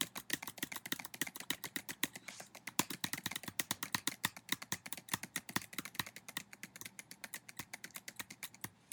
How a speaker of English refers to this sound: I'm sure that keyboard clacking was lovely for everyone to hear.